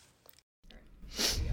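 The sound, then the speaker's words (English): A quick, forceful sniff straight into the microphone, a loud breathy hiss lasting about half a second after a brief silence, with no talking. “Sniff really fast. Oh, as I sniff right into the microphone.”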